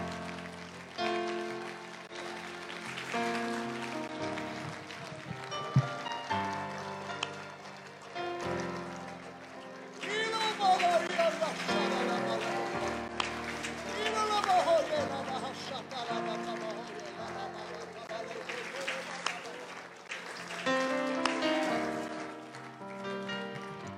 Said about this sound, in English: If you are thankful to the Lord for the heritage that God has given this church and the leadership that this church has today, would you lift your voice, clap your hands, give a shout of thanksgiving?